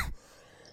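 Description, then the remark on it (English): A single short cough bursts out at the very start, then only faint background hiss remains for the rest of the moment. “Oh shit, now I'm coughing.”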